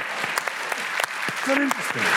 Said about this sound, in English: Let us older people applaud ourselves for being alive.